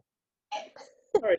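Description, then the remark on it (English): A single sneeze: a breathy, wavering intake followed by a sudden sharp burst that trails into a short voiced tail. It is moderately loud, and no one speaks over it. “Bless you.”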